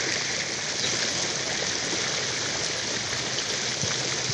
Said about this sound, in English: And here, listen to that sound of the water. You see the water behind me.